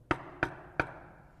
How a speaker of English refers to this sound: She must be out. The door's locked. Knock again if you don't mind.